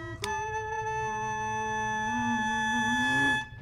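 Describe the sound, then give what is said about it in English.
A buzzy, steady hummed tone through a plastic toy trumpet, held for about three seconds with a slight pitch rise near the end, fairly loud, no talking. “Like that's just a piece of plastic that looks like a trumpet, right?”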